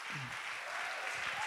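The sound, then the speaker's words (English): A crowd claps steadily to give God praise during a sermon, a dense wash of many hands applauding together, with a faint voice rising briefly underneath near the start. “Clap your hands and give God the praise one more time.”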